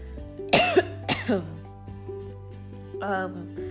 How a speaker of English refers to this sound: Sorry, I'm coughing too much. I don't know what happened. My throat is really dry right now.